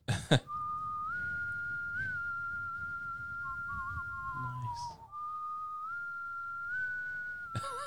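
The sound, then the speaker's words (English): A person whistles the slow, sustained melody of a song with long held notes and gentle pitch rises, clear, with a brief throat-clearing noise near the start and another midway through. “Oh, well, I'll see if I can whistle.”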